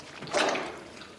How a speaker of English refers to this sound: Agent Cooper's body camera remains obscure but records the wet sucking noises at the underground river.